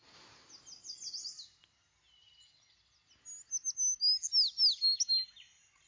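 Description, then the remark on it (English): A bird chirps in quick descending whistled notes, a short burst, a pause, then a brighter run of rapid chirps. No talking. “Dad, it's a bird, okay? It's just like all the other ones.”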